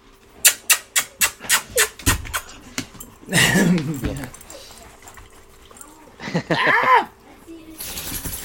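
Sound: dogs whimpering and panting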